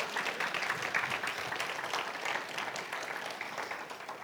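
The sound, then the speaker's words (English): An audience claps together as praise to God in a dense, continuous wash of hand claps, steady and fairly loud for about four seconds, with no voices over it. “If you believe it, give God a big hand clap of praise.”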